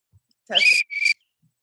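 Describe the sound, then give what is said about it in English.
A lifeguard whistle, owned for almost 20 years, is blown in two sharp, loud blasts, a longer trill followed by a shorter one, with a breathy onset before the shrill tone. “Oh, here's my whistle. I've had this whistle for almost 20 years. All right, give it a blow for a second.”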